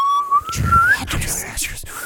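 A whistling recording played backwards: a clear whistled tone slides upward, then gives way to smeared, garbled warbling and breathy bursts, loud, for about two seconds.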